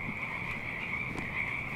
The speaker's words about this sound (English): Oh yeah, those are totally frogs. This is Frog Town.